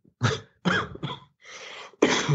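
A rapid fit of harsh, echoing coughing, four or five loud bursts in quick succession with a raspy breath between them, with no talking.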